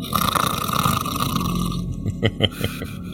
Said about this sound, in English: Of course he snores. That's good.